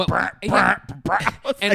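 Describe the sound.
Someone imitates a fart with their voice, making four short, buzzy, sputtering bursts in quick succession, fairly loud.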